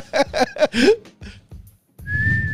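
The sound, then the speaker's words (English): A few quick, rising vocal bursts give way to a single steady whistle held on one high pitch for about half a second, clear over a low background rumble. “Yeah, so whistling was also a core part of this movie.”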